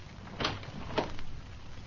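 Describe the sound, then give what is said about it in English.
A door being opened after someone knocked: a soft clunk of the latch followed by a second knock-like thump about half a second later, with a low background hum and no voices. “Open that door.”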